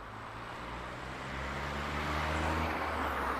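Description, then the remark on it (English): A steady wash of distant road traffic with a low engine rumble, heard while walking towards the roads, swelling slightly as a vehicle seems to draw nearer. No one speaks. “And you'll be able to hear in the background, becoming more and more prevalent, the sound of traffic.”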